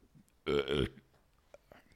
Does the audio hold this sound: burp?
yes